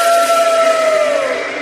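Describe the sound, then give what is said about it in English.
A loud, sustained howl of storm wind, a steady whistling tone that slowly sinks in pitch over a rushing hiss, with no voices. “Suddenly, there was a mighty howl.”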